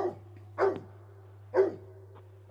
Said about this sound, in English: Sorry. Sorry. You got some loud dogs messing with you. They are. Well, I've noticed them kind of walk around the neighborhood. That's kind of why I was wondering if they're just loose dogs that you guys know.